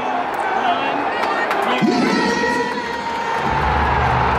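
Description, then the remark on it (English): A large crowd lets out a loud collective "oh" that swells over steady arena noise, with scattered shouts and cheering mixed in, then settles into a low rumble. “I love how the crowd knew as soon as he said they went, oh.”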